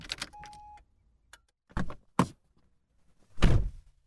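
A car door clicks open with a few latch rattles and short knocks, then swings shut with a loud, solid slam as a man gets out of the car at his house. No one speaks.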